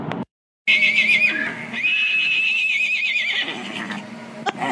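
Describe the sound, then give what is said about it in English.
A miniature horse named Liam whinnies loudly, a long wavering neigh with a shrill warbling pitch that rises, holds, then fades out over a few seconds. “And here is a recording of my mini Liam giving Chili a run for his money.”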